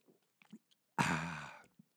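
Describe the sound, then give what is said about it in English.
A few soft gulping and mouth sounds of someone swallowing a drink of water, followed by a loud, breathy satisfied exhale lasting about half a second. “Excuse me, I got to take a drink of water here.”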